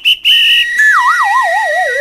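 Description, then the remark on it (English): A whistle is blown: a short shrill blast, a steady high tone, then a warbling pitch that wobbles and slides steadily downward. No voices, just the loud whistle on its own. “Chains, trays of gravel, all kinds of fabric, a box of whistles.”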